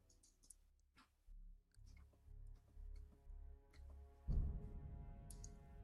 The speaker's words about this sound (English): As you hear the clicking and clacking of claws against ice and stone moving down the hallway.